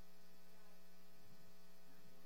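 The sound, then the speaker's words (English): A steady, low electrical hum drones on without a break in a church sanctuary, quiet and even, with a faint buzzy overtone and no voices or other sounds over it. “What kind of noises do you hear right now in the sanctuary? Just say it out. A hum.”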